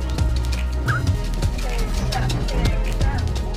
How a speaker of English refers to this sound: Oh my gosh, a parrot.